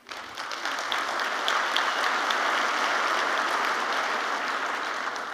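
Steady audience applause during a speech on the economy of Macomb County, a dense wash of many hands clapping at once, starting abruptly and holding at an even, fairly loud level throughout.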